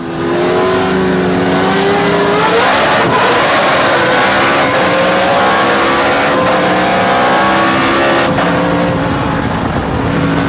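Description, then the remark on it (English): Several Trans Am race cars roar loudly together at a standing race start, engines in first gear revving hard against the rev limiter before the green flag, then climbing in pitch as they accelerate, a dense, continuous wall of engine noise with no talking. “you're on it, you're in first gear for the start of the race, but you're right up against the rev limiter before they drop the green flag.”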